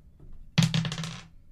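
A ten-sided die clatters across a hard surface, a sharp first impact followed by a quick run of rattling bounces that settle after about half a second, with no voices.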